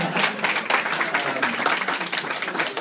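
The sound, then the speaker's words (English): An audience at the Advent applauds a guest author, many hands clapping in a dense, continuous patter that stays fairly loud and even throughout. “If you want to clap, that's fine.”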